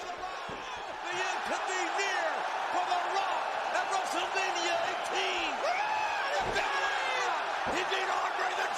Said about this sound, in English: He's fired up coming back. The crowd's going crazy.